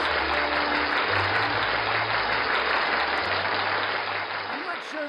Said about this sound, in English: You know, it's National Pastry Day. Hey. Yay. Where's that applause again? Pastry Day.